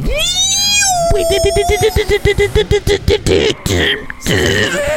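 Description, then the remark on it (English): A racing car's loud, whining engine revs up high and holds, then sputters into rapid, pulsing bursts as the car roars forward on a nitro boost, continuous throughout. “It's time to hit that nitro. You're not the only one with nitro.”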